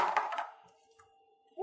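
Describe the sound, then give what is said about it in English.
A die is rolled on a table: it clatters across the hard surface in a few quick bounces, then a faint ringing tone lingers and fades; a brief thud comes at the very end. “Try and roll away from the recorder, please.”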